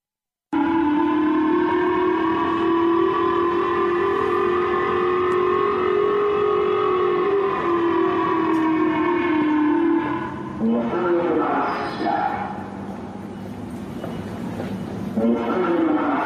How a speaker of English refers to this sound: But it's a dick move though to launch this missile over Japan, because the citizens of Japan were frightened by it, because there was an alarm that went off and a warning. And this is what it sounded like.